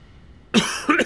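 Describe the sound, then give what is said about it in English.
Two quick coughs in succession after a moment of near silence, the second slightly softer, sharp and breathy with no talking. “Great use of silence. That I coughed through.”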